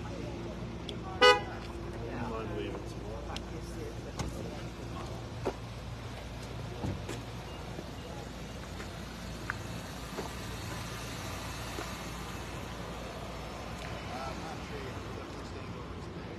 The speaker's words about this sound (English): All right, folks, I'm going to move to this other side just because there's a lot of cars coming up here.